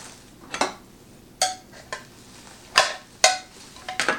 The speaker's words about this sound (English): All right, almost done. Getting everything out of these little plastic bags here. And then I'll look at the user manual and see how everything goes together.